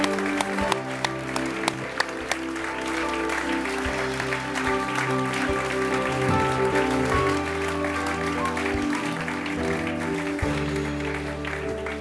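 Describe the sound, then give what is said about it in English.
A crowd applauds the Lord steadily for about twelve seconds, dense clapping holding at an even loudness, with sustained musical tones running underneath throughout. “Give the Lord a great clap.”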